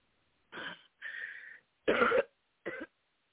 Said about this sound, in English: Come on out of it. Deep breath and cough. Deep breath first, then cough. D deep breath, then cough, in Jesus' name.